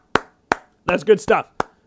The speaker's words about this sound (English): Give yourself a round of applause, state of Iowa.